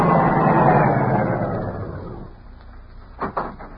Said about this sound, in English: Car coming.